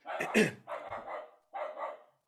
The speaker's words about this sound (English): That's definitely kennel cough. Definitely a Puerto Rican dog coughing. Yeah. There's some white people outside my window. It's a German Shepherd.